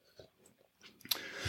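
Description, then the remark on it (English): Someone sips water: a few soft, wet mouth clicks, then a louder slurping swallow near the end. No one speaks. “Let me take a little sip of water. I'm thirsty.”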